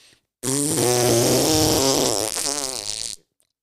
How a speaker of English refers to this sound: Farts.